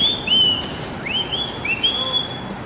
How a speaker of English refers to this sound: This is, my mom still lives here. This is where I grew up. I bet you if I whistle, she'll come up with it.